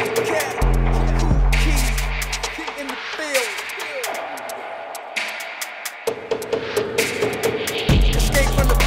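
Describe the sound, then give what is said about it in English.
A heavy old-school rap track kicks in loud, with booming deep bass notes, sharp percussive hits and gritty, distorted textures driving a steady rhythm throughout. “It is heavy, heavy old rap.”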